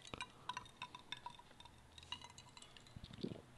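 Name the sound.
whiskey glass clinking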